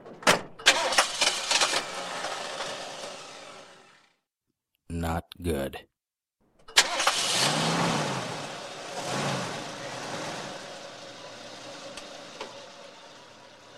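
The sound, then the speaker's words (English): A car engine cranks with a rapid churning rhythm as the driver behind the wheel turns the engine, then cuts out. After a brief spoken remark, it cranks again, catches and roars to life, revving up before settling into a steady run, at night after the rain has stopped. “I sat down behind the wheel of my car and turned the engine.”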